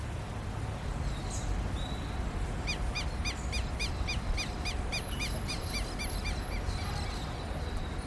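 A rapid series of bright, repeated bird calls rings out over a steady urban background hum in the dense city of Sao Paulo, Brazil, the evenly spaced chirps echoing off the buildings.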